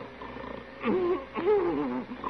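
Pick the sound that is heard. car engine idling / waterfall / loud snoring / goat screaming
loud snoring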